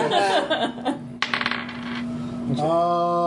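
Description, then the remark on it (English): Dice clatter onto a table in a short, rattling burst of quick clicks during a tabletop game, with voices and laughter before and after. “Those are my, that's my dice. You got this mixed up. Here you go.”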